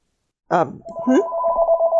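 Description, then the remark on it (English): The speaker's own phone rings with a steady, continuous electronic tone lasting over a second, preceded by a short vocal sound. The ring is clear and moderately loud. “I hear a ringing. Oh, that is me.”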